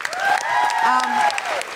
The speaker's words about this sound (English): Chris, big round of applause for Chris.